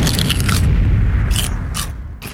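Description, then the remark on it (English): A loud sonic boom effect: a deep, sustained rumble with sharp crackling bursts breaking through at the start and twice more near the end, with no voices. “It's time for the Pop Culture Minute with Josh. Sonic Boom!”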